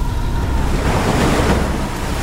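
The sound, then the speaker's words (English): A loud, steady rush of water putting out a fire fills the whole moment, a broad churning hiss like surf or a heavy flood pouring, with no voices. “A burst of water. Putting the fire to rest.”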